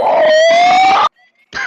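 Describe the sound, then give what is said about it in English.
A person imitates a cleric beast's howl: a loud, strained, rising vocal wail with harsh harmonics lasting about a second, a short pause with a faint squeak, then a brief rough grunt-like burst. “I can make a cleric beast howl.”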